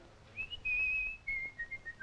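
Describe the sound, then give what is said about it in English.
A person whistles a short tune alone, a few clear sustained notes stepping gently downward, steady in volume against a quiet background. “They've sculpted his lips into a whistling position, which is quite sweet.”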